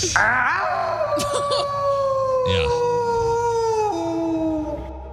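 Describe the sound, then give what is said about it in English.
A recorded long, eerie howl with a rising start and slowly falling pitch, sustained for several seconds like a coyote; a short spoken word briefly cuts in partway through. “It sounds like a more high, like a higher pitch of that. I feel like that sounds like a coyote.”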